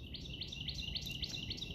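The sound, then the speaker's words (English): A bird chirps repeatedly outdoors in a quick, steady pattern of bright, high notes, fairly faint and set against a low background rumble, with no one talking. “This bird is annoying as hell.”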